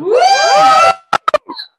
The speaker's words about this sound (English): As always, the screaming does break my eardrums, but thank you for the enthusiasm tonight.